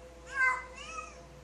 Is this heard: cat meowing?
yes